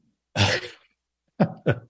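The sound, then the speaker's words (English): A harsh, rasping cough bursts out, followed after a short pause by two quicker, throaty hacks in succession, with no talking. “First, I make fun of you, and then I cough up so much that it actually sounds like I'm hacking something.”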